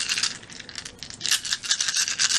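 Two dice are rolled, rattling and clattering across a hard surface in a quick, continuous burst of small clicks, fairly crisp, with no voices.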